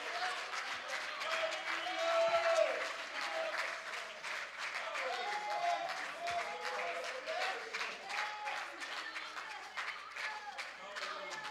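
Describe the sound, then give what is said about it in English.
A church audience claps their hands to magnify the Lord in a dense, sustained wash of applause lasting several seconds, with scattered voices and cheers mixed in throughout. “If you believe that, would you clap your hands and magnify the Lord?”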